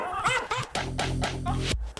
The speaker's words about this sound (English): What are they coming out with a dog synth, dude? Like, just as a waveform of dogs barking.